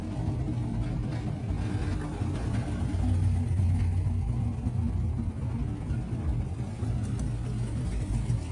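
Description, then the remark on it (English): A deep, throaty muscle car engine rumbles steadily throughout, loud, with a slight swell in revving partway through as the car drives by. No voices are heard. “maybe just for a muscle car”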